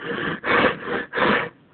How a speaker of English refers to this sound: Caller, who are you with the heavy breathing? Please tell me your name.